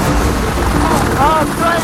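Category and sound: vehicle, helicopter rotor sound effect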